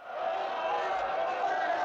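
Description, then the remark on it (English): A crowd in Room X9 applauding ironically, a dense and steady wash of clapping mixed with raised voices that holds at an even, fairly loud level for about two seconds. “Room X9 is infamous for ironic applause from the crowds.”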